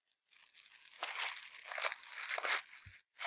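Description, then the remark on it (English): Continuous crinkling and tearing of plastic packaging from a Deep Discount order as it is pulled open, with irregular louder rustling bursts over about three seconds, heard alone without any voices. “have to get, like, scissors or something.”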